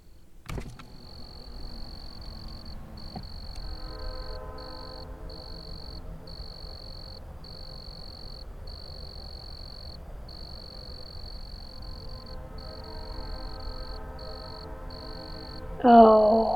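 Crickets chirp at night in a steady, high-pitched pulsing trill that repeats throughout, over a low droning background hum, with a brief louder rustle near the end.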